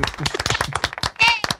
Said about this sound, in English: Okay, so let's clap her in, please.